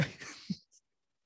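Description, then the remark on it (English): One short, breathy sneeze bursts out and fades within about half a second, fairly soft, followed by a brief faint click and then silence. “Bless you.”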